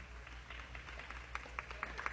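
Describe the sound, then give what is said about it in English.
Faint applause from a crowd gathered at a Stevens College event celebrating three honorees: scattered, uneven claps that grow a little more frequent and sharper toward the end, over a steady low hum. “So they get a good hand from the crowd that has gathered here.”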